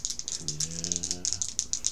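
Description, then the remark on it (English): Dice rattle steadily in a cupped hand or cup, warmed up for a dexterity roll, a quick stream of bright clicking taps for about two seconds, with a faint low hum briefly underneath. “Give me a dexterity roll. Warm these dice up.”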